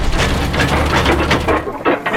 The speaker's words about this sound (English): The spirit bottles clink together, the horses sort of pace nervously in their stalls, and the train shudders from side to side a little bit, almost as if you were like on an airplane experiencing turbulence.